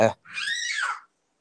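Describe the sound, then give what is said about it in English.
A child lets out one shrill, high-pitched scream lasting under a second, set off by a dog. It rises and then trails off, following a brief voiced sound at the very start. “And I got kids screaming in the background because of the dog.”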